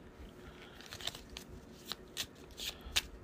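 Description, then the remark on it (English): A deck of cards is shuffled, with set-aside cards being shuffled into a game's encounter deck. There is a run of quick crisp riffling snaps and soft papery flutters, fairly quiet, with no voices. “Oh, I think I've already shuffled those in. Oh, no, wait. Did I? Nope. I'm doing it now.”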